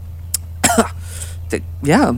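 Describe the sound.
A person who has just woken up gives a few short, raspy coughs and throaty clearing sounds in uneven bursts, fairly loud, ending in a strained, voiced grunt, with a low steady hum underneath.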